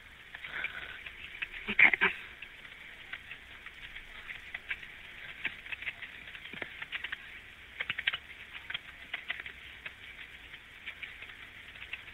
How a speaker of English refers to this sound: Bear with me here one moment. I'm just typing this information in the call here.